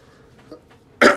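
A loud, close cough bursts out after a second of near silence, a harsh throaty hack that breaks into two quick pulses right at the end.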